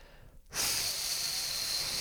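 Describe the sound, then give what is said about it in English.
After a brief quiet moment, a voice imitates a heavy rain downpour with a sudden, steady breathy hiss that holds at an even, fairly loud level for about a second and a half. “That's the sound, kind of, not at all, of downpour.”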